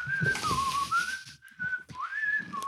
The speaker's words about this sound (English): Seriously. Nailed it. You can put so much in your mouth and whistle at the same time. It's pretty impressive.